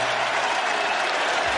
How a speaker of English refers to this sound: It worked. The crowd went nuts.